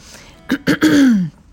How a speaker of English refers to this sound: Gotta clear my throat.